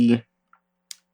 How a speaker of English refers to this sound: Hold on, because I'm typing Jared Leto Joker.